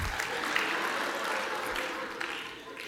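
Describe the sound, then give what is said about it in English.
A crowd applauds steadily, a dense, even wash of many hands clapping at once, holding a constant loudness for the few seconds with no voices on top. “Who's not clapping?”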